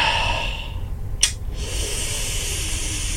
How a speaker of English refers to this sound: Breathing in is incorrect. I'm sorry.